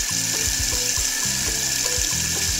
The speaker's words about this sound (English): I already have my rice in a bowl. I will go ahead to, you know, just wash my rice and have it, you know, set or placed on my gas burner. So let's run the water and wash the rice.